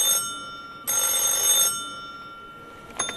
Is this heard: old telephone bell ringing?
yes